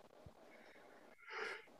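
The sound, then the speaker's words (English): A single breathy yawn swells briefly and fades, a soft airy exhalation with a faint voiced edge, heard alone without any talking. “I'm yawning, bro.”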